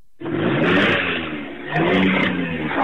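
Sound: car engine revving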